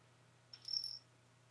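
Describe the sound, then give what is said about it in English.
A single short burst of high, thin cricket chirping lasts about half a second, fairly faint, over a steady low background hum with no voices. “Oh, crickets! See, you heard crickets.”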